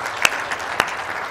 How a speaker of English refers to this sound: Would you give God a round of applause if you believe that?